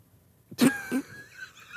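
Two quick, sharp sneezes burst out one after the other, the first louder than the second, followed by a faint lingering hiss and quiet background.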